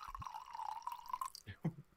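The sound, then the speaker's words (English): A drink is poured into a cup in a steady trickle for about a second, followed by a couple of soft splashes or drips. The sound is quiet, and no one talks. “Do you like the ASMR of me pouring, by the way?”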